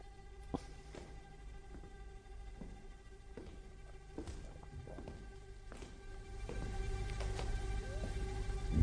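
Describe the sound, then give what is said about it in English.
Footsteps from the original 1960 soundtrack recording of Oliver, made at the Maida Vale Studios: scattered, fairly distinct steps land at irregular intervals over a steady, droning musical backing that grows louder toward the end. No one speaks. “They are my footsteps.”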